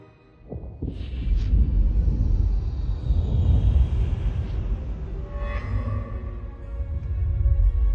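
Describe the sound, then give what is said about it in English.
A deep, sustained rumble of thunder rolls on for several seconds at steady loudness, low and heavy, with no voices over it. “Thunder, you can put down the umbrella.”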